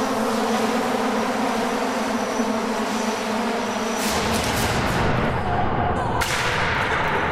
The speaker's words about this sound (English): It's taken hours to get the lighting right for this shot, and I've been waiting to hear what the whirring propellers sound like in that big acoustic chamber. Finally, we're ready to launch.